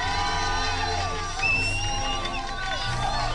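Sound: crowd applause and cheering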